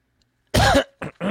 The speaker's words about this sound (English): Sorry if I'm coughing in the mic like that, guys.